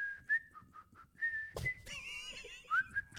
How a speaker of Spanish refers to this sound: A ver, silba la cucaracha.